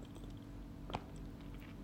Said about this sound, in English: So let me take another sip of my tea.